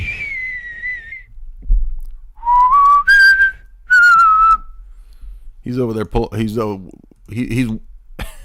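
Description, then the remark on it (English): A thin, high whistling nose sound comes in a few sustained, wavering tones, followed by voiced mumbling with a faint whistle riding over it, fairly loud, likely a person imitating it. “He's over there hooting on Link's pipe, right, with that nose whistle, that booger whistle.”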